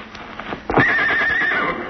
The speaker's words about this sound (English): Horses! You got horses hidden back in the woods.